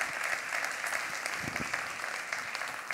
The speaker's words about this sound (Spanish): Si quiere aplaudir, aplauda para Dios porque Él es fiel y Él es bueno.